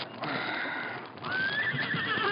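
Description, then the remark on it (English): A saddled white horse whinnies loudly and close by beside a stream in the hills at dawn, a shrill, quavering neigh that rises and trails off over a couple of seconds, with no voices around it. “Fred stirred and sat up as he heard the whinny of a horse close by.”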